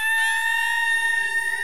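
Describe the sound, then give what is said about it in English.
A loud banshee scream sound effect: a shrill, unbroken electronic wail of piercing high tones layered with faint repeating pitch sweeps, playing alone without any talking. “Yeah, do you want to hear the Banshee scree again for the crack?”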